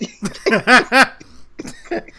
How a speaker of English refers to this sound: Sorry, I'm coughing. This is not corona at all. It's allergies.